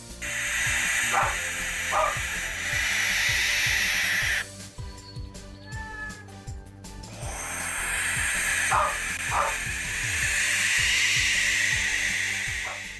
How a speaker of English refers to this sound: Do not adjust your television and ignore the barking in the background.